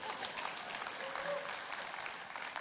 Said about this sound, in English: That was a good place to clap too.